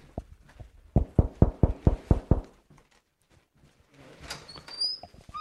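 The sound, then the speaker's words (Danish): A rapid, evenly spaced series of about seven firm knocks on a door by a visitor arriving with flowers on Valentine's Day, followed by a brief silence and then soft rustling with a faint squeak. “Jeg tager lige skoene af her, så banker jeg på.”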